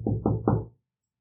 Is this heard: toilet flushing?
no